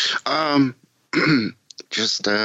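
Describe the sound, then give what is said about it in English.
A fairly loud series of three or four throaty bursts, throat clearing and coughing sounds separated by short pauses, with no speech. “I apologize if my coughing and sniffling got annoying to anybody, but, you know, it is what it is.”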